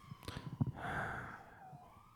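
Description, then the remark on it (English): A faint police siren wails in a steady falling tone outside, preceded by a few soft breathy sniffs and small knocks; no one speaks. “It's just like, as soon as the sirens turned on, it was just in the background.”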